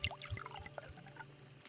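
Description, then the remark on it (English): A dark liquid from a small green-tinted bottle pours and splashes into four metal cups, a quiet trickle with small ringing clinks and a couple of soft low knocks, with no voices. “He pulls the cork from the top and begins to pour into four metal glasses.”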